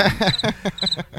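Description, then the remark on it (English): Crickets chirp in quick, steady pulses, about six bursts in a little over a second, loud with no one talking. “Crickets? Anybody?”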